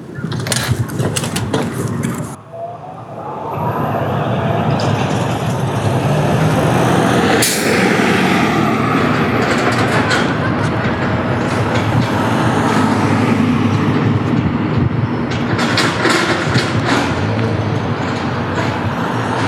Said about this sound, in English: Even the sound of the O train, even though it incited fear in me that I would miss my bus, I always enjoyed hearing the familiar sounds of school.